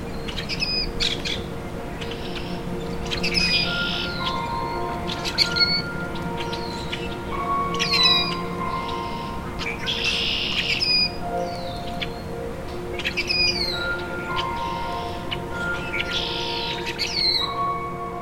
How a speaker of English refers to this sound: In southern Ontario, they can sometimes be found in winter blackbird flocks. But the best time to find them is in spring migration, in flooded forests. Their song is a bit hard to describe, but can sound like rusty hinges.